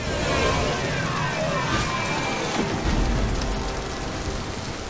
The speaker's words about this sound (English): It is a heavy rain out here.